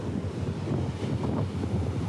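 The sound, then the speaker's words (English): Steady wind buffets the microphone while waves roll and wash ashore on a beach in the morning, a continuous loud outdoor roar with no voices. “As I've been here on the beach this morning,”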